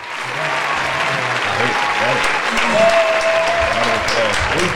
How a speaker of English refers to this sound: I think I got an applause button. I don't know. I hope I don't hit the wrong button.